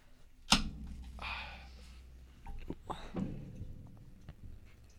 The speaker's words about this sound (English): I'm pouring my beer.